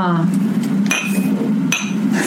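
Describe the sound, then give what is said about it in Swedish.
Glasses clink together twice in a toast, each bright chime ringing briefly before fading, with soft murmuring voices underneath. “Vi börjar med en skål på det.”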